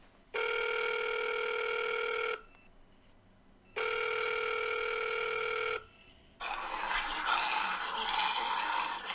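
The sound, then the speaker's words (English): A telephone rings twice in long, steady electronic bursts separated by a short pause as two callers are connected to the WGBITN News call-in, then the line opens into a rush of hissing static. No one speaks. “We have two callers online right now. I'm going to go ahead and cue them in.”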